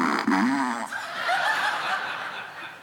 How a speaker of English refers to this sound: I don't know if you've ever seen one of these, but my 9-year-old thinks this is like the greatest Christmas gift you can ever give somebody. It's a cordless remote control fart machine. It's awesome. Listen.